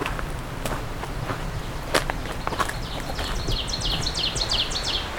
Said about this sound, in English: It's the oven bird again.